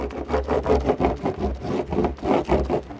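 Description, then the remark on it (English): Quick, steady rubbing strokes scrape back and forth in a brisk repeating rhythm, a dry scuffing sound of wax being worked onto a surfboard before surfing at a North Atlantic beach, air about 30 degrees and water about 40 degrees, with no one talking. “So you were waxing up here.”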